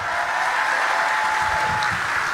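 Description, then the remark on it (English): An audience claps steadily for Don Peebles, a dense, even wash of many hands with no voices over it, holding at a fairly loud level throughout. “Clap it up for this great brother again.”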